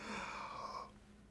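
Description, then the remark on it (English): A single deep breath drawn in during a guided breathing exercise, a soft airy rush lasting under a second before trailing off into near silence. “Take another breath with me. In.”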